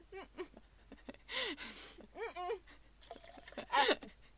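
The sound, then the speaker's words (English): A sudden spray of water bursts out as a person spits back out a big mouthful of water they had just drunk, followed by a second sputtering splash, with vocal sounds and laughter-like voices. “And I had to spit it back out.”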